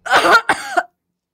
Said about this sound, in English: A cough from the cinematographer can be heard audibly.